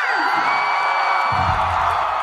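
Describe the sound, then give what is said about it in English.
A large crowd cheers and whoops loudly and continuously, a dense roar of voices with scattered high shouts, at a live show in Las Vegas, reacting to an on-stage announcement of a two-year residency renewal. “The crowd is kind of like, yeah!”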